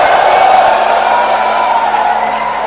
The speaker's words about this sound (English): Lift your hand and give the Lord a shout of hallelujah and praise.